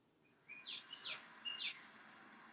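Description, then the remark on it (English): A bird sings outdoors in Florida in springtime: three quick, bright chirping phrases with sliding notes, spaced evenly about half a second apart, heard alone over a quiet background. “And that's a bird singing at your place?”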